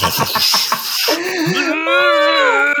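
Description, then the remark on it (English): A voice imitating an alarm that played audio of someone vomiting on loop: several quick, rough gagging bursts, then a long, strained, wavering retching groan that rises and dips in pitch, fairly loud throughout. “Anyway, but the gas thing was, the next morning the fucking alarm was the audio of him vomiting on loop.”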